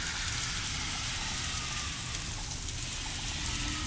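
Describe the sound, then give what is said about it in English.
A steady, dense patter of tiny ice pellets, like dry rain, falling and ticking on surfaces all around in cold weather, a continuous crackly hiss with a low rumble beneath and no talking. “Look at all this ice pellet. Is that called pellet? It's a little tiny little thing.”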